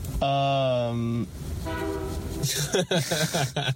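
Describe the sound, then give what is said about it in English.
A loud, steady train horn blares for about a second, then sounds a second wavering note, and a voice begins talking over the rumble near the end. “That train agrees.”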